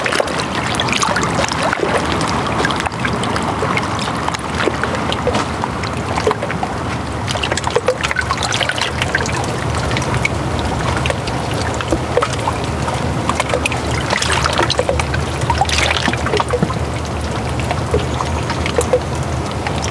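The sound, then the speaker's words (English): Water moving steadily past obstacles, a continuous gurgling and rushing with small splashes and trickles layered through it. There are no voices. “And hearing the water negotiate its space around other objects soothes my soul.”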